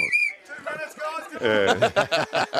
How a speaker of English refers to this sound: Blow us the whistle, if you can.